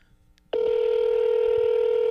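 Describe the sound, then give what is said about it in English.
A phone keypad tone rings out as a number is dialed to call Arby's: after a near-silent moment, one loud, steady electronic beep starts abruptly and holds unbroken to the end. “I'm about to call Arby's.”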